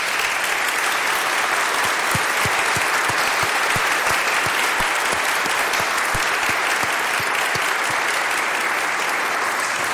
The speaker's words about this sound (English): And I'd like for all you students, if you don't mind, to stand up and let us welcome you with an applause this morning.